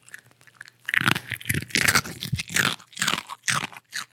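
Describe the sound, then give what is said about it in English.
A cockapoo named Oscar crunches loudly on a hard doggy Bix biscuit with serum put on it, a rapid series of sharp, brittle bites and chewing snaps with no talking. “I'll just put some serum on a doggy Bix.”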